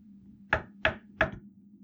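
A woman knocks three times on the white-painted door of a guest bedroom, firm evenly spaced knocks, each a sharp thud with a brief resonant tail over a faint steady hum.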